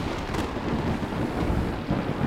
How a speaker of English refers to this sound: Suddenly, dark clouds appeared over the camp of the Guru. There was a loud thunder and crackling lightning as the forces of destruction were sent towards Guru Tegh Bahadur and the Sikhs.